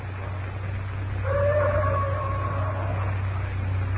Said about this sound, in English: That bull ape is certainly doing a lot of boasting tonight.